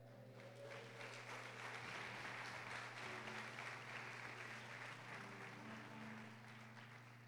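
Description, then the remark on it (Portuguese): An audience applauds the Lord in a dense, steady burst of crackling claps that lasts several seconds, with a sustained low tone, likely a held keyboard chord, humming underneath and no talking. “Diga glória a Deus e aplauda o Senhor.”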